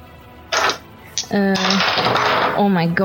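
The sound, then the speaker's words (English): A handful of many dice, rolled for damage in a tabletop game, clatters and tumbles across a hard tabletop in quick bursts, then keeps rattling under excited voices that exclaim and talk over it. “So now I have to roll 8.”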